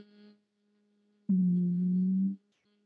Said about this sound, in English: Another one for breathing I love is the humming.